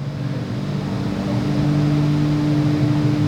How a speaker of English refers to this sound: He is before the line right now, spooling things up, getting the truck nice and warm. Staging the truck.